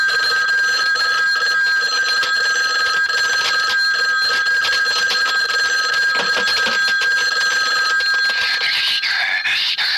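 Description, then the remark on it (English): A telephone rings loudly and without pause, its bright, high metallic tone holding steady for the full ten seconds, then wavering slightly at the very end. No voices are heard. “First, I terrorize my victim by the telephone.”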